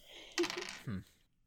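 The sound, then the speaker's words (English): A small die, rolled during a game, drops onto a hard floor and bounces, rattling in a quick flurry of light clicks before a short low tonal sound ends it. “The floor is not where you roll dice.”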